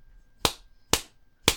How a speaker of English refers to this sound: Jeffy, how dare you escape from mommy? That's it. You are getting a spanking. Nancy gives Jeffy a spanking.